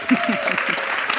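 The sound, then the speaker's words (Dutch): An audience applauds a wethouder (alderman) as she is introduced, in a steady, dense wash of clapping that holds at an even loudness throughout, with a few faint voices murmuring underneath. “Mogen we een groot applaus voor wethouder”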